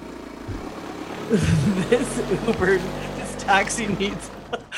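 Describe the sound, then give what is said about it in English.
A voice imitates a loud, rough taxi engine with no muffler, sputtering and revving in uneven bursts for several seconds, fairly loud. “This taxi needs a service. It needs a muffler. Our taxi needs a muffler.”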